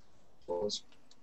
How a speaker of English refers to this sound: Are you typing? Start typing? I'm not typing, yeah. But I am clicking. Oh. It might be picking up your clicking as typing.